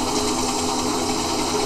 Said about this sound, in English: You will be on the helicopter out of here now. Waving off the helicopter.